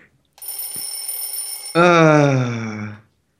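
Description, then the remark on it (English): An alarm clock goes off loudly: first a steady, high-pitched electronic ring, then an abrupt switch to a harsher, louder buzzing blare that lasts just over a second before stopping. “I'm going to make the other alarm go off in a moment”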